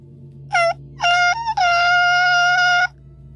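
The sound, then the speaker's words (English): A voice mimics a squeaky door in a cave with three high-pitched, drawn-out creaks: a short squeak, a wavering one, then a long steady whine that holds before cutting off. No talking. “No, it's a little squeaky door. I got squeaky doors in this cave.”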